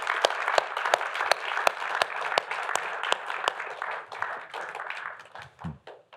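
An audience at Grace Church applauds steadily for several seconds, a dense wash of many hands clapping with a few sharper individual claps standing out, then the clapping thins and fades away.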